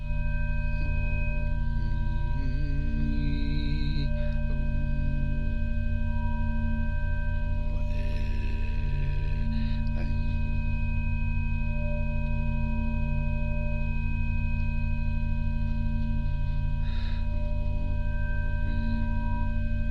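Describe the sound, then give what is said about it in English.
Steady electronic sine tones for sound healing, said to show the harmonic structure of the heart when transmitting love, hold at several harmonic pitches throughout, forming a constant layered drone, with occasional faint voices toning along on vowels underneath. “Kind of weird running love with electronic tones, but those are showing the actual harmonic structure of the heart when you're transmitting love.”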